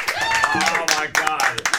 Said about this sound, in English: Let's all applaud.